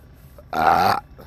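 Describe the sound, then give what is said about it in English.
A single loud burp lasting about half a second, a rough guttural belch rising out of quiet background noise and cutting off abruptly. “Listeners, apparently the burping's working.”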